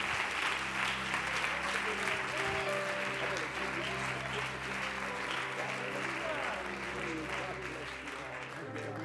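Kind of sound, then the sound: crowd, audience hand clapping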